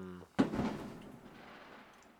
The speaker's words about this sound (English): Fireworks. Yeah. Damn. Cheers, celebration. Yay.